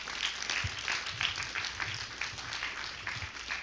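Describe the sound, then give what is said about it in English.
A church crowd applauds steadily as praise to God, many hands clapping at once in a dense, crackling wash of sound that holds an even, moderate level throughout with no voices. “Come on, give God a good praise clap.”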